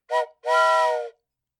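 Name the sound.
voice imitating a foghorn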